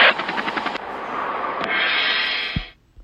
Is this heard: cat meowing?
no